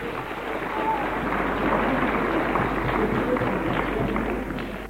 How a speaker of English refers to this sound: Give her a clap.